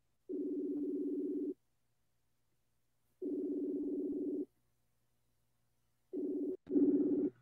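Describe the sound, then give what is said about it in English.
Outgoing phone ringback tone while calling a woman: steady buzzy tone pulses, about a second long with two-second gaps, three in all, the last cut off by a click. No voices. “So I'm going to give her a call. Ah. Okay, it's ringing.”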